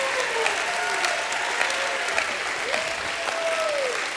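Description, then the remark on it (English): An audience bursts into sustained, dense hand clapping mixed with cheering and shouted praise to God, including rising and falling whoops, continuing steadily throughout without a break. “Somebody, anybody, get to the rock and give Him a hand clap and a shout of praise.”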